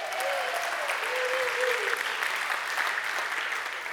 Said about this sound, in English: Stand up there. Give her a big clap.